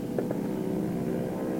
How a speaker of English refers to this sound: Hurry up. Here comes the plane.